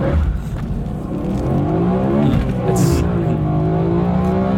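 A high-revving V8 car engine heard from inside the cabin, loud and continuous, its deep muffled drone climbing in pitch as the revs build and hold.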